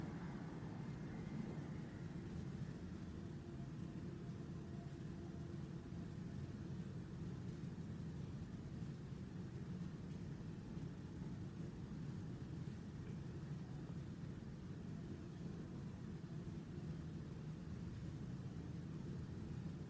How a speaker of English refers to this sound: In moments like this, you might just hear a train sound. Or car.